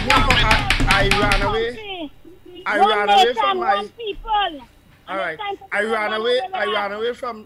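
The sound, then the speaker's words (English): A quick run of about eight loud, evenly spaced thumps on a desk, Parliament-style desk-thumping in support, followed by a person talking. “You hear me thumping for you like I'm in Parliament?”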